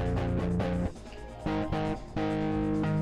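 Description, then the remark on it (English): A vape being puffed through a heavy distortion effect with the drive turned up high, a loud, harmonic, guitar-like buzzing in several sustained bursts with brief dips between them, and no voices. “This literally sounds like an electric guitar. I have the drive up so much.”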